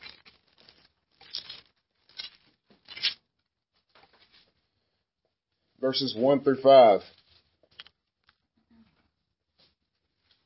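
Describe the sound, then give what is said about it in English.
Bible pages being turned forward to Isaiah 44: a few quick, papery rustles and flicks in the first few seconds, followed by a short stretch of a voice speaking, then quiet. “Turn forward to Isaiah 44.”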